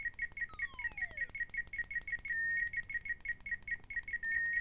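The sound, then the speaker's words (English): A bright, rapid electronic blipping repeats in a steady quick rhythm, a cute video-game climbing effect for Lynn the trash panda in the game Trash Panda, with a descending whistle-like glide early on and sustained high tones later, over a faint low rumble. “And then I've got a little cute climbing sound for Lynn the trash panda.”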